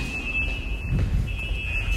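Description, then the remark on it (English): A steady, high-pitched electronic alarm tone rings continuously over a low rumbling background, fairly loud and unbroken for the whole stretch, with no talking; an alarm in a New York subway station, set off by people skipping the turnstiles without paying. “That's what that alarm's for.”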